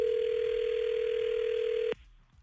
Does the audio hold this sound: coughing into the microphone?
no